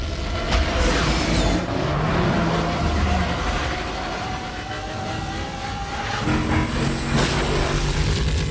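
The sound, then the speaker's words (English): A sci-fi jet bike engine from the film The Island roars steadily and loudly, with whining tones that sweep high early on and a fresh surge of thrust near the end. No one speaks. “So let me see if this clip plays just so you can hear what these things sound like.”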